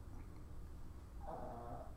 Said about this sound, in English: Let's... hear the dog snoring.